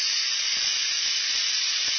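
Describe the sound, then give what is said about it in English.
A steady, loud hiss of a wintergreen-scented aerosol cold spray spraying continuously for about two seconds, with faint low thumps underneath and no talking. “I'm going to have to spray it again. So a lot of times you have to spray it in between.”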